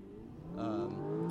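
A first-generation Audi R8 V8 sports car engine revs hard, its note climbing steadily into a loud, rising roar after a quieter idle-like start. No voices are heard.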